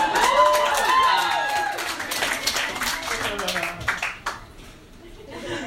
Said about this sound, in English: Yeah, no clap for that? Okay. Yeah, trust me, it deserves a round of applause.